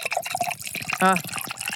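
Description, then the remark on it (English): Liquid pours into a coupe glass with a bubbly gurgle and trickle, joined by a brief rising tonal glug partway through, while a voice murmurs softly in the background. “I'm actually really kind of scared that I'm about to pour it all over my computer.”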